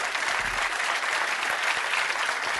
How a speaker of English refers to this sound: Because I'll wait while you clap your hands.